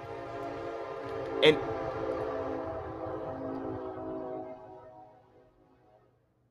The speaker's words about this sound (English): Sorry, it was a train, you know. Sorry about that, it was a train.